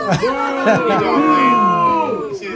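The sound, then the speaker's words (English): A crowd booing, many overlapping voices holding long, low, sagging 'boo' tones in a steady, loud wash for a couple of seconds, tapering slightly at the end. “Do you like the new booze? Yeah, it sounds like booze.”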